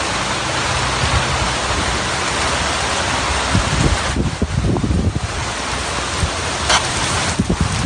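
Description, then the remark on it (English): Steady rain pours down in a dense, continuous hiss, with scattered heavier drops and patters breaking through near the middle and end; no voices, just the constant wash of falling water. “And I said, live in the rain. Ugh. That's not a pleasant sound.”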